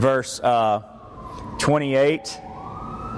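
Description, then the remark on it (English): An emergency vehicle siren wails outside behind the speaker, its pitch swooping up and down in a couple of loud bursts before trailing into a steadier rising tone in the background. “Sorry, there's another siren behind me, so that's why I'm smiling.”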